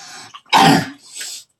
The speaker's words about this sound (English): We both have sinus problems. That's why we're coughing like monsters. I promise we don't have the COVID.